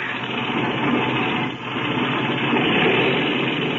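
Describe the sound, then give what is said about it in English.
A loud airplane engine roars steadily at high power as it is run to clean it out before takeoff, a dense continuous drone with a brief dip partway through before surging back up. No voices are heard. “Okay, clean out that engine while I climb into the front cockpit.”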